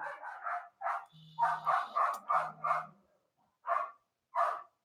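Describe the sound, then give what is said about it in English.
A dog barks repeatedly in quick bursts, a rapid run of sharp barks followed by a pause and then two more spaced-out barks, fairly loud with no voices. “We got a dog barking and it's picking up.”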